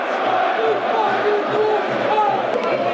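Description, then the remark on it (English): A big football crowd jeers and groans in derision as a shot is put miles wide of the target, a dense, loud wall of voices that rolls on steadily for the whole stretch, with no single voice standing out. “shot miles off target, man flew inside the box, time on his side, there was no one in attendance, and he put it miles wide to derision of the Mill crowd.”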